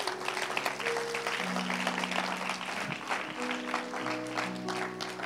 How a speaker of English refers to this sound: Let's give the word of God a hand clap of praise.